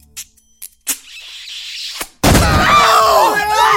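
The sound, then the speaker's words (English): A few scattered thumps lead into a sudden loud crash as a door is smashed in, followed by a sustained noisy clatter with raised voices over it. “Well, why did you just break down the door?”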